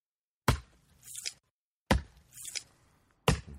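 Three sharp, evenly spaced knife chops strike a cutting board as intestines are cut up, each followed by a softer, wet scraping squelch as the blade cuts through the soft tissue. No voices.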